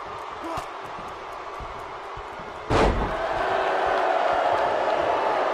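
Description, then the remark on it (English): A large wrestling crowd keeps up a steady roar of booing at the Hitman during his match against DiBiase. Partway through, a single heavy slam thuds out, and the crowd swells louder afterward and stays raised. “Because they're just booing the hell out of the Hitman.”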